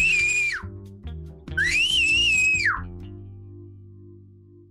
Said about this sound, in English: I could whistle very, very loud, like very loud. If you want, I could whistle right now for you. Yes, please.